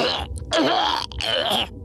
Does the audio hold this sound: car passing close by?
no